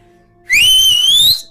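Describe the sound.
A loud, shrill finger whistle rises sharply and holds a piercing high tone for nearly a second, then cuts off.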